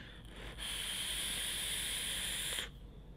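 A vape with a 0.3-ohm coil set to 60 watts being inhaled: a steady, airy hiss with a faint high whistle, lasting about two seconds and cutting in and out abruptly. No one speaks.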